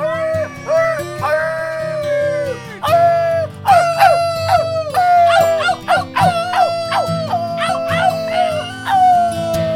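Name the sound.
people imitating wolf howls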